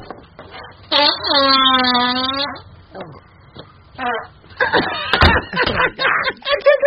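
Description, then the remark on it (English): A loud, buzzing fart rips for about a second with a steady low pitch, followed later by a short sharp squeak, while people laugh and talk around it. “He has the squeaker at the end. He lets it rip, and then at the very end, pops one out, okay?”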